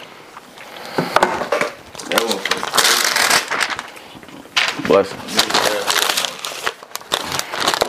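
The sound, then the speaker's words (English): Paper crinkles and rips in several bursts of dry, crackly rustling, with a man speaking briefly between the louder handling noises. “Hey, let me get a piece of paper, bro. A corner of that bitch or something.”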